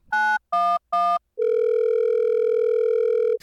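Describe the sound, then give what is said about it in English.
Telephone line tones before a 911 emergency call: three short, evenly spaced electronic beeps, then a long, steady, fairly loud tone that holds to the end. No voices. “This is a 911 phone call recording around the Whittlebury Apartments approximately 1 month ago.”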